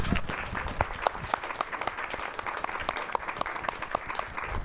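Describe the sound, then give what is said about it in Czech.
Steady audience applause, many hands clapping in a dense, continuous patter, with no speech over it; the applause welcomes Pavel Veleman, social worker of the year 2022. “Ahoj Pavle, velký potlesk pro Pavla.”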